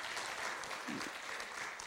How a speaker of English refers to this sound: Come on, we ought to give the Lord a great big hand clap offering.